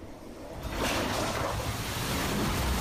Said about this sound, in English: A resident of Naples was taking video of water rising in the condo complex where he lives when a storm surge hit, blowing the door off his building. Wow. Water rushed in.